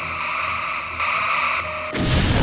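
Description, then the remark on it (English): Weak phaser beams fire at a pirate ship, hitting it simultaneously in six or seven places, as a steady, loud electronic buzz with bright layered tones, then a harsh crackling burst of impact takes over near the end. No voices. “Weak phaser beams hitting them simultaneously in 6 or 7 different places.”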